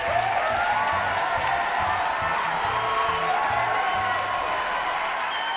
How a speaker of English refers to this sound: I think we should have a round of applause here.